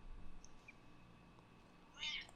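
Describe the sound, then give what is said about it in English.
A male cat gives a single short, high-pitched meow near the end, wanting to be petted, after a quiet stretch with only faint background noise and no talking. “Look at this fucking cat trying to fucking abuse me.”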